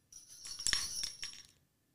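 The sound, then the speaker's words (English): A short jingle bells sound effect played after the punchline of a Santa joke, bright and high-pitched, shaking in quick rhythmic jangles for about a second and a half before cutting off into silence. “I had to put the sound effect on.”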